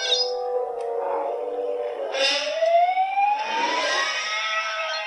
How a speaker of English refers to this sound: Okay, right. That's the original. It's like a siren and a man screaming.